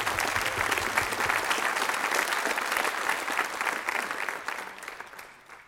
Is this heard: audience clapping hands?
yes